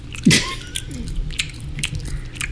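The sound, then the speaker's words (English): Close, wet chewing of gum: moist smacking clicks repeating irregularly right by the microphone, with no talking over them. “You need me chewing this gum?”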